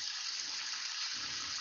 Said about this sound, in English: Now I'm going to spray some cold water on everything here just to get the pasta to stop cooking. Kind of turn it off.